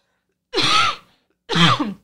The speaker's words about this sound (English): And on top of this, it's allergy season. So hold please while I cough into my elbow.